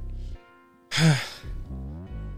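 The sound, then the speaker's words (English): A single loud sneeze bursts out as a sharp, breathy blast after a short quiet pause, followed by a few low voiced sounds. “Sneezing on a lot.”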